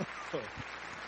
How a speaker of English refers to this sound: And here's your applause.